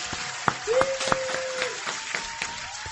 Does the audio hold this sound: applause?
yes